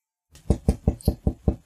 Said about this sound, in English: She hears the knocking on the door, and you hear some shuffling behind it, and the door flies open.